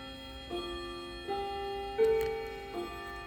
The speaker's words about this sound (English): Yeah, I'm gonna have to wait for the clock. Y'all hold up, because it's gonna gong.